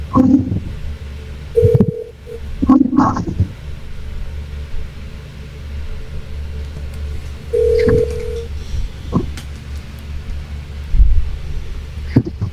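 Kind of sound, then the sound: signal or alarm, telephone call being dialed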